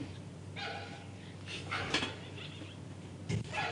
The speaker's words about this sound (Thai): มีหมาเห่าด้วยเหรอครับ ฟิวเลยหมาเห่า ครับ ฮะ นี่ตอนนี้ยืนอยู่หน้าระเบียงบ้านชั้นสอง ครับ หมามันบอกว่าอะไรอ่ะครับ เราก็คุยกับมันไม่รู้เรื่องเหมือนกัน ช่วยถามมันนิดนึงได้ไหมครับพอดีอยากรู้ว่ามันเห่าทำไม